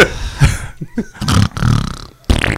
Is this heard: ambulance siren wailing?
no